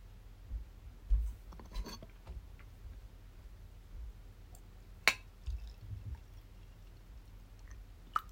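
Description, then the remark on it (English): Quiet tabletop handling of teaware while preparing to pour another bowl of tea: soft scrapes and taps, a few light ceramic clinks with one sharper clink midway, without any talking. “I'm gonna pour another bowl of tea.”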